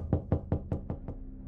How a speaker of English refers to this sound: At 12:30 a.m. on a Friday morning, I was woken up by a series of knocks on my heavy wooden door.